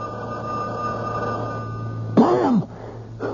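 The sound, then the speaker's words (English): A telephone rings steadily in a continuous trilling tone for a couple of seconds, then breaks off abruptly as a short, louder rustling burst cuts in. “Stay away from the phone. If we wait long enough, they'll give up.”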